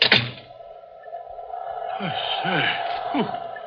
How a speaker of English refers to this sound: What was that? Just the wind in the chimney.